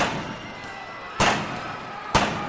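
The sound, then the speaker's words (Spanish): Two sharp, loud gunshots crack out nearly a second apart, fired point-blank by Chalino at Chapo Pérez during a crowded celebration, over a steady background of murmuring crowd noise. “Chalino le dispara 3 balazos a quemarropa al Chapo Pérez.”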